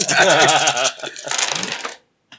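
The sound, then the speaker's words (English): A handful of dice, including white, red and black ones, clatters onto a table in a dense burst of hard clicks and rattles, settling into scattered ticks before a brief pause and one final tap. “That's got a lot of dice.”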